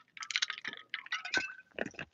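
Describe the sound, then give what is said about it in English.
Wet mouth sounds of someone sipping water: a run of soft slurps and swallows in a few quick bursts, with a short gulp near the end and no talking. “I'm going to grab a sip of water before we go.”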